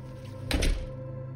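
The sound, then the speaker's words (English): A door shuts with a single dull thunk, short, as a man quickly slips through it and closes it behind him, over a low steady hum with no voices. “He throws me some awkward glance as he quickly snakes through the door and closes it behind him.”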